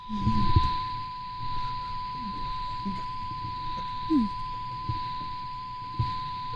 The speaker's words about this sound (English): Play it again. I want to hear it. Let me pull it up. It's the Arecibo message.